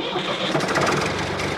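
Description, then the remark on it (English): A tractor engine cranks and catches, settling into a steady, loud, rough rumble that runs through the whole brief moment, with no talking over it. “daybreak, the farmer climbed out of bed, grabbed a Starbucks coffee, order for farmer, and jumped into the tractor.”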